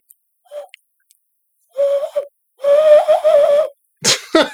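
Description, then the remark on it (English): Someone blows through cupped hands to imitate owl and pigeon calls: a short faint hoot, then two longer, wavering, breathy hoots, ending in a rough rush of air. “I was doing bird calls. Look at that. Like, that's sick. Like some owl shit. Some pigeon shit.”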